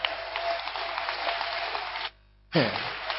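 An audience claps in a dense, steady wash of applause that cuts out abruptly for a moment, then surges back just as loud, with voices mixed into the noise.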